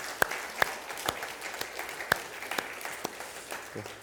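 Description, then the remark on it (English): An audience applauds U.S. military combat veterans, a dense patter of many hands clapping steadily, with a few sharper, louder claps standing out now and then. No one speaks over it. “All right, give them a round of applause.”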